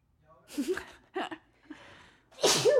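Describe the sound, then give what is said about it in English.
A few short, breathy catches of the breath build up, followed by a loud sneeze at the very end, with no other voices. “Take a breath and sneeze. I feel it.”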